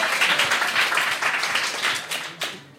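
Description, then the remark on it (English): An audience applauds in a dense, steady round of clapping, broad and crackly, holding at a fairly even loudness for a few seconds before thinning slightly at the end, voting by applause for "derpy" in a live show's herpy-or-derpy guessing game. “Derpy. Round of applause.”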